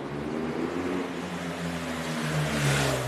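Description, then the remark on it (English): A police motorcycle and a Bentley flying the Royal Standard drive up to a synagogue on Hallam Street in London on 9 November 2023, bringing King Charles; their engines a steady droning hum that swells slightly toward the end, with no voices. “Suddenly, a police motorcycle rushes forward, followed by a Bentley with the Royal Standard.”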